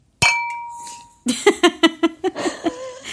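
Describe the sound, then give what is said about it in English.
A single bright clink of glasses in a toast rings out clearly and fades over about a second, followed by rhythmic bursts of laughter. “I remember you used cheers to talk to that. Cheers.”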